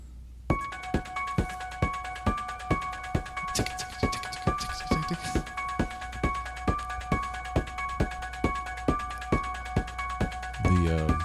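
A dance remix of a horror movie theme: a steady, driving pulse of sharp, papery beats under a repeating high piano-like motif and sustained synth tones, with no voices.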